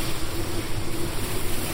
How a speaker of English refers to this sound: I call above the rush and roar of an ocean climbing into the sky.